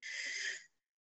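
A single deep breath drawn in through the nose as part of a breathing exercise, a steady airy hiss lasting under a second before cutting off into silence. Fairly soft, with no talking.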